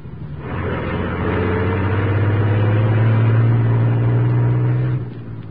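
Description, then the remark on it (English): The engine of a huge truck rumbles steadily as it pulls out of an alley, its low drone rising slightly in pitch, then cutting off near the end. No voices. “As the huge truck rumbled out from the alley, the squad car carrying Moran with Lowry and Axford approached from the main street.”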